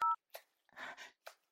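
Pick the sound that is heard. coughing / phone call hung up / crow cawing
phone call hung up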